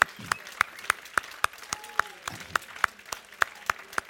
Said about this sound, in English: Now would you just give the Lord a big clap off and thank Him.